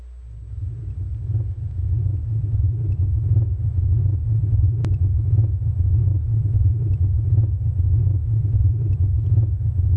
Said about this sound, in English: Did you know that cells make sounds? I did not know that until I studied this. Cells themselves make sounds. And I want you to hear this. You put a microscope to it and check this out.